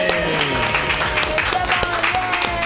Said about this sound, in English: Wait, everybody, first let's clap.